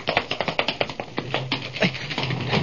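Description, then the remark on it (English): A quick run of light, sharp taps on a laboratory door, first in a fast steady rhythm and then slowing into a few scattered knocks, with no talking. “Tap the door.”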